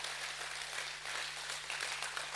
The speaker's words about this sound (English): Clap like I'm talking to somebody today.